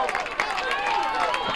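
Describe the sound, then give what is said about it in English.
The Auburn High School student section cheers at a baseball game between Auburn and Prattville, a dense, steady wash of many overlapping voices shouting together at a fairly loud level, with a few brief sharp accents rising out of the noise. “And as you can hear, a part of the great crowd that showed up was the Auburn High School student section.”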